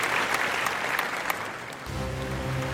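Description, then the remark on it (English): A crowd applauds a family singing group after their song, clapping steadily in a dense, continuous wash with a few sharper individual claps standing out; toward the end a low tonal hum or music rises beneath it. “A round of applause for Ireland's treasure, the Conroy Family Singers.”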